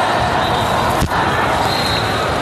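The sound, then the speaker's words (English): A single sharp basketball bounce thuds once about midway at the 2019 Nike Nationals basketball event, set against a steady, dense wash of rumbling crowd-like noise that fills the whole clip. “That's what you're hearing, all that basketball, all that rumble, all those bells and whistles.”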